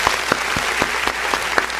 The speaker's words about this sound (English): So once again, thank you so much for being a part of that. All right. Clap.